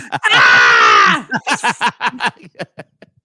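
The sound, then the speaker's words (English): A voice imitates a child's pained scream: one long, loud, high wail lasting about a second, then a string of short, sobbing gasps and yelps that taper off into quiet whimpers. “Was that a toddler being stabbed?”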